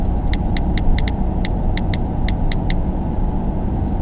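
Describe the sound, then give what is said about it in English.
A town car drives along with a steady, low engine rumble, while a quick run of bright, regular ticks sounds over it for the first few seconds. “The town car was sanitized before pickup, I assume.”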